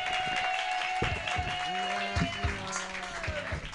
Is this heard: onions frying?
no